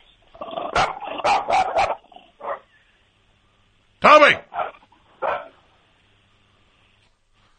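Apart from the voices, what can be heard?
dog barking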